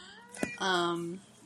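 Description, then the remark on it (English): A single drawn-out meow from the speaker's cat, clear, lasting about half a second, preceded by a brief soft click, then quiet. “And my cat is here to comment on the episode as well.”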